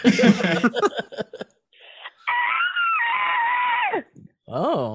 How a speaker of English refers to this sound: A lot of screams in October. Yeah. Well, I mean, it's how Halloween.